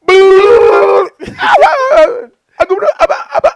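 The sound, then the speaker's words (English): A dog lets out a long, steady howl, then a wavering, whining yowl, followed by a quick series of sharp barks and yips. “Stupid dog, you make me look bad.”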